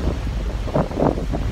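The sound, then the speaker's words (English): Strong, steady wind buffets the microphone at the ocean while surf rushes and swells in the background, a continuous roar with a couple of brief surges, no voices present. “And then I realized I don't get to be this close to the ocean very often, so why not spend some time at the ocean instead?”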